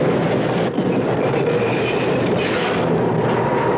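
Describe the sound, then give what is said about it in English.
A subway train from Manhattan rumbles steadily along the rails, a loud, continuous roar with a faint high metallic whine riding over it and no voices. “It's our stop. We've got to get off the subway.”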